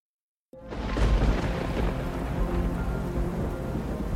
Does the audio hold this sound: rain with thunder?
yes